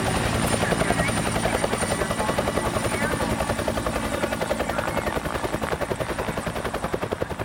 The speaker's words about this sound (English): All right, let's get him in the chopper.